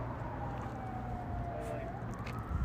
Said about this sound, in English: Let's see, I hear some sirens just in time, right on cue. Maybe they'll come by.